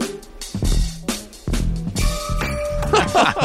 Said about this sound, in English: Okay. Wow. I love it. That is definitely a sleigh bell. That is awesome. That was really fun. Yeah. That's a different use of the sleigh bell, though, right? Because typically we are used to the like the movement, and here they're almost an accent.